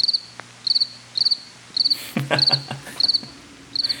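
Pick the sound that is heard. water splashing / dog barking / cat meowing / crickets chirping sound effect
crickets chirping sound effect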